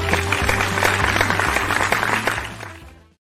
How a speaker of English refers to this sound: All right, clap it up, fake applause, but all the best here.